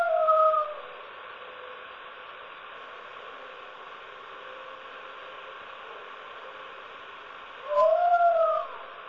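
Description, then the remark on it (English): Two short, wavering howls, one at the very start and one near the end, ringing out over a steady background hiss, with long stretches of nothing but static between them. “you can actually hear the barking sounds in there, very much like the Cincinnati one”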